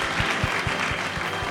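An audience claps steadily in a dense, continuous round of applause, many hands overlapping into a bright wash of sound at a constant, fairly loud level with no talking.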